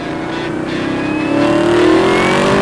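A 2018 Camaro ZL1 1LE engine revs loudly, its deep, buzzing roar climbing steadily in pitch as it accelerates, with no voices over it.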